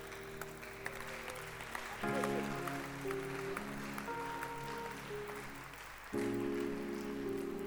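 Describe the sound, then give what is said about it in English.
An audience claps their hands together in a dense, steady patter throughout, over sustained keyboard or organ chords that shift and swell louder toward the end. “You can clap your hands.”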